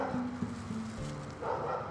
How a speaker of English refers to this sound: You got the dog barking right now, boy.